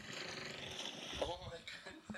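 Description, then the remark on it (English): A humpback whale lets out a short, wavering moan with a rising-and-falling tone, heard at moderate volume over a constant rushing background hiss. “Here, humpback whale makes noises.”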